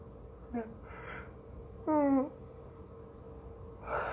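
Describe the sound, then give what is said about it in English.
A person yawns: a brief squeaky yawn, with a short vocal whine near the start and a louder stretched, wavering yawn in the middle. “Oh god, I really do need to go get some water, because that's yawning needs to stop.”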